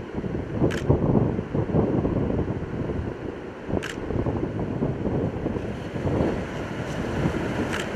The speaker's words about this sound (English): Notice the wind just picked up 5 to 10 miles an hour just all of a sudden, and the waves are already showing that.